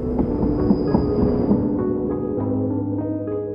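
A train departs from a depot and rumbles along on the rails, a steady low-pitched roar with rhythmic clacks of wheels over track joints, continuous with no voices.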